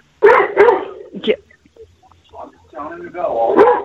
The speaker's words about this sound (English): can you tell that dog to shut the fuck up?